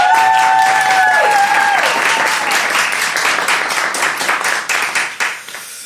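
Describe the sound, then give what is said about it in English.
A studio audience claps and applauds loudly to vote for time travel into the past, with dense, steady clapping that gradually thins and fades toward the end, a few whoops rising briefly at the start. “And applaud now if you think it's preferable to time travel into the past.”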